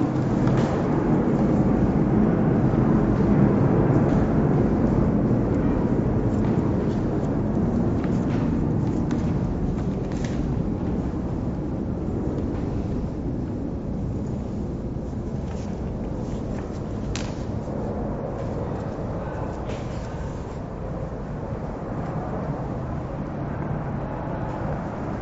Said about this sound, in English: let's wait for the plane.